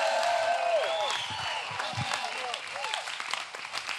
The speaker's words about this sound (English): Somebody give the Lord a clap and a shout like you got energy.